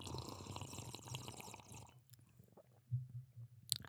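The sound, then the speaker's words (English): Sipping and swallowing of water: a wet, slurping gulp followed by a few low, soft throat swallows and a small click at the end, with no talking. “But before we get to that, I need to take a sip of some high quality H2O.”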